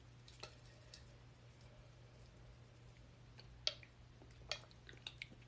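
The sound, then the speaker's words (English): Someone sips a thick fresh juice of turmeric, ginger, sea moss and carrots, with a few quiet, wet slurping clicks spaced out over a steady low hum, mostly toward the end. No one speaks. “I'm sipping on turmeric, ginger, sea moss, carrots.”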